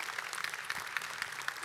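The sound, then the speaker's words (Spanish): A crowd applauds steadily, many hands clapping together in a dense, continuous patter that stays at an even level throughout. “Definitivamente, empezaron a aplaudir excepto cuando dije eso, porque también nosotros vamos a ser juzgados.”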